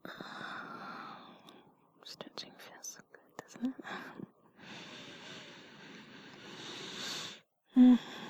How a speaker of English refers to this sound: So does deep breathing.